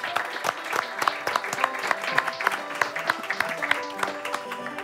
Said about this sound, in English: Guys, thank you very much. Thank you. Give them a warm applause.